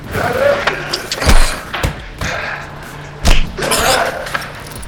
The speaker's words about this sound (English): Surprisingly, he stood his ground and grappled him to the side, slamming the enforcer hard enough into a wall to shake the hard alley we were in.